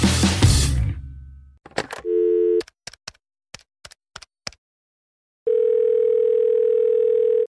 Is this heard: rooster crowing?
no